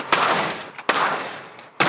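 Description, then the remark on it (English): A storm door is deliberately slammed shut three times in succession as a test of whether it breaks, each sharp, loud bang followed by a rattling decay, spaced a little under a second apart, with no voices. “We tried slamming it over and over again.”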